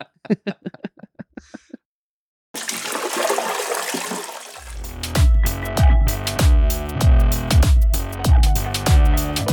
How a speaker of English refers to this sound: Yep. Drops mic. Insert toilet flushing sound.